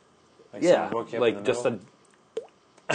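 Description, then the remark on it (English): A voice mimics dripping liquid, making a run of warbling, bubbly mouth sounds followed after a pause by one short, sharp plop. “Just a little drip. Just a few dollops.”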